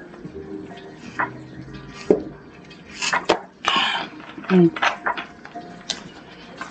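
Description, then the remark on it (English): Someone drinks sparkling water: a clink of a glass or can, then several short gulps and swallows with a faint fizz, ending in a small throat clear. No one speaks. “1 second, because I'm going to drink some water.”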